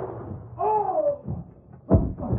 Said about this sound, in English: Look out, Tonto. Gunshot.